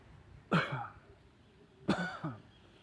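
human body sound, coughing

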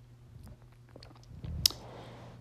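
human body sound, sipping a drink

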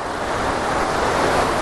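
nature, waterfall rushing water

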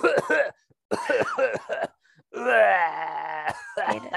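human body sound, person coughing

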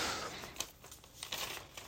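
household object, paper being crumpled up

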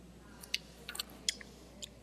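food or drink, sipping beer

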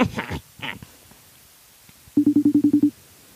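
signal or alarm, phone call ringing

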